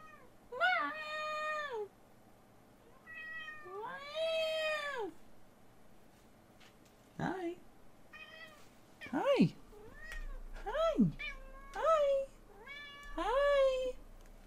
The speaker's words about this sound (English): Hi. Don't worry. The rat cat is screaming. And now she's on a box. Oh, switching boxes? Damn, she classy with it.